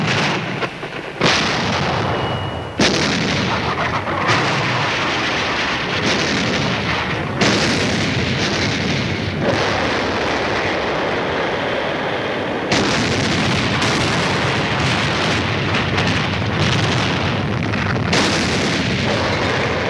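Heavy naval guns pound away at hidden Nazi shore batteries during a seaborne invasion in a dense, continuous barrage, booming blasts overlapping with sharp reports and rumbling roar, loud throughout with no voices.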